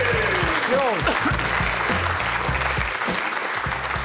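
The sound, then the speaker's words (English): An audience claps steadily for about four seconds, a dense, loud patter of many hands with no break, while a faint voice murmurs underneath. The clapping follows points being awarded to Ian Moore, who leads 4-0. “Just you clapping that one.”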